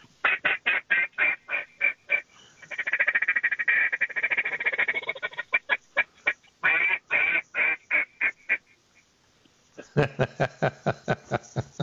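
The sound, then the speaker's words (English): A smooth, crisp duck call, suited to rice fields, is blown: a run of sharp, evenly spaced quacks, then a rapid rolling feeding chuckle, more quacks, and a final burst of quick clipped notes. “Would this be a rice field call, duck call?”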